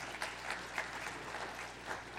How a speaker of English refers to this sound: If you believe that, give God a hand clap of praise today.